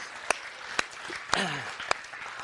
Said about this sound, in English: How many of you guys, let's clap on that. I'm excited about that.